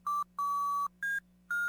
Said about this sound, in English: Paul stands completely still beside the cellar door for about 16 seconds when out of nowhere, a rewarding jingle echoes through the empty void and the door swings open.